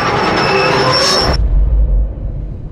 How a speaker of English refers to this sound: He hears the steam whistle of the express and the desperate screeching of brakes.